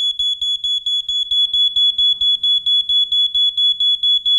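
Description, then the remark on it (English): A loud, shrill electronic alarm beeps rapidly and continuously, a high steady tone pulsing in quick even bursts with faint low thumps underneath. “Beeping can sound like that.”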